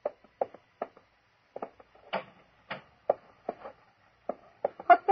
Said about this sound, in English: That noise. You mean the clocks, madam? There are more than 100 clocks in this room. Don't they get on your nerves? ticking away together like a nightmare.